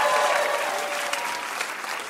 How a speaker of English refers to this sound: Big round of applause for our contestants.